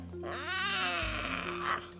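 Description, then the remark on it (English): A young child imitates a cat's meow with one drawn-out, wavering vocal cry that rises in pitch, then slides back down over about two seconds, with a steady low hum underneath. “That sounds like a cat. Are you a cat today?”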